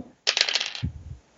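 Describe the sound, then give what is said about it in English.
Dice are rolled for a wrestling attempt, rattling in a quick, bright clatter for about half a second, then tumbling to a stop with a short run of soft, low knocks. No one speaks. “Wrestling, all right, roll it.”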